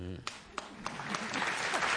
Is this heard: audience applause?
yes